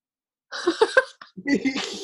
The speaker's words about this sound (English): Oh no, I'm going to cough. Hold on.